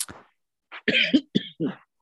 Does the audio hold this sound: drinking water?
no